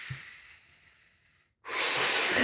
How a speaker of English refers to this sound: Deep breath.